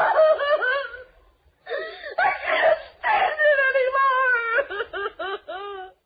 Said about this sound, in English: And crying loudly, too, when there's no reason.